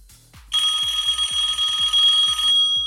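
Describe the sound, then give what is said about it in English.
A retro telephone ringtone: a loud, rapid metallic bell trill that rings steadily for about two seconds with bright, shrill overtones, then stops abruptly. No one speaks. “Gives you a really, really strong urge when your phone rings to pick up and go, ahoy, hoy.”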